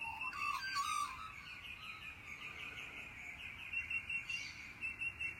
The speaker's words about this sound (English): A long time ago, I learned that, let's just say, most birds have four basic calls. And one of them is, let's say, mom to parent. Mom to child, child to mom, that little set. Another one is male-to-male aggression.